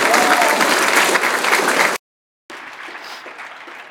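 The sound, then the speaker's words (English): A crowd claps loudly in a dense, steady wash of applause, cuts out briefly, then resumes a little softer with scattered cheering mixed in. “Can we just clap one more time for everybody?”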